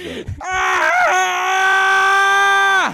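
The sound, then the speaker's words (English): A loud, sustained vocal scream held steadily for over two seconds after a brief rough onset, sounding forced and theatrical, like someone deliberately faking a shriek. “That actually seemed like somebody trying to scream.”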